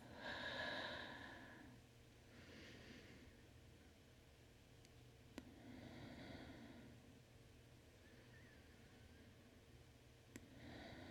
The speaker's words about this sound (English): Join me by taking a couple slow, deep breaths in through your nose and out through your mouth. In. Out.